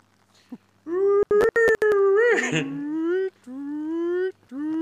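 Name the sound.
siren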